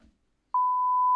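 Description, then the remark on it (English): A censor bleep over a spoken name: one steady, loud, high-pitched tone that cuts in after a brief faint murmur and a short silence, then holds unbroken to the end. “Podcast listeners don't know who blanked out name is”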